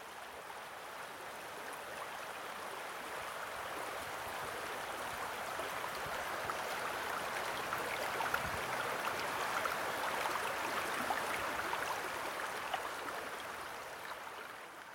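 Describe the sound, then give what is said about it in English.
River water rushes and burbles steadily beneath a bridge, a continuous broad wash of flowing sound that stays even throughout, with no voices. “So here I am on the bridge now, and they do say about anglers that no angler can cross a river without leaning over and looking in, and I think there's a lot of truth in that, and that's what I'm doing right now.”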